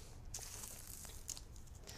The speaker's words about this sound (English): So now that I've traced that line, and it does give me an extra guide, then I can tape down my tracing paper on top of the pattern piece.